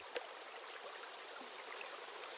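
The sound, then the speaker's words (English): A shallow stream babbles steadily over a green, pebbly bed at sunset, a bright continuous rush of water with small splashy trickles, fairly quiet, with no voices. “Cool water rushed over Marky's feet as the sun began to set, the earth below green and pebbly.”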